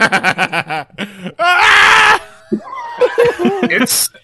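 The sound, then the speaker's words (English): A voice imitates a giant man in pain lumbering from a car and screaming with every step: a loud, strained, drawn-out yell under a second long, framed by choppy laughing bursts before it and groaning vocal noises after. “Every step he's just screaming like that one guy.”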